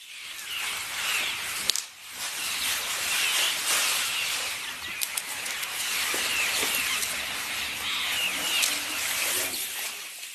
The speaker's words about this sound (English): Certainly they would have made a lot of rustling as they foraged in the bush. The closest we can get to that is listening to a herd of elephants grazing in the Sabi River Valley.